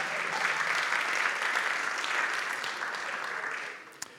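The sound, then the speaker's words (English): A crowd claps and cheers for those who would first pray and ask the Lord, a steady, dense wash of applause that holds for about four seconds, then thins out, ending with a last sharp clap. “Can we give them a cheer this morning?”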